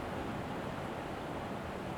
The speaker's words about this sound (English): Oh, listen to the rain. My goodness me.